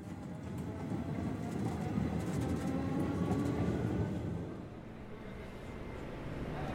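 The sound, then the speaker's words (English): An RER commuter train heading to Roissy rolls along the rails with a steady low rumble and rhythmic clatter, heard from inside the carriage; the noise eases slightly near the end before building again. “When the day comes, Julien takes the RER to Roissy by himself.”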